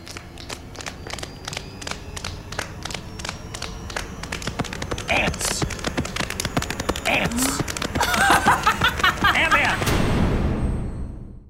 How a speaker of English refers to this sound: Paul Rudd and Michael Douglas are slapping their hands and snapping, and then they just do it faster and faster, and then they scream ants.